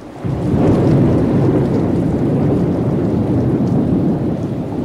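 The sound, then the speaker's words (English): Heavy rain pours steadily while a deep, rolling rumble of thunder swells beneath it, a dense, continuous storm wash filling the whole stretch with no voices; a thunderstorm recording from side one of an album in a nature sound album series. “…, side one was the ultimate thunderstorm.”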